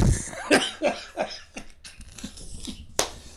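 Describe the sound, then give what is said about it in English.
A fairly loud fit of coughing: a quick run of several harsh coughs in a row, a brief lull, then one last sharp cough. No talking. “Got the cough.”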